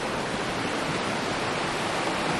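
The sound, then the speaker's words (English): A steady, unbroken rush of flowing river water fills the whole stretch, fairly loud, with a dense hiss and no talking or other distinct sounds; a river at about 1450 meters elevation on a morning around 6 C, the water at 10 C. “The river, by the way, I just checked it, just pulled the thermometer out.”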